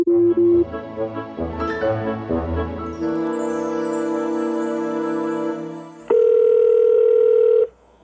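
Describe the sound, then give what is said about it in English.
An electronic phone call ringing tone plays alone, with a few short chiming notes, a sustained steady tone, then a louder, brighter tone that cuts off near the end. “Ring, ring, ring. Felicity phone.”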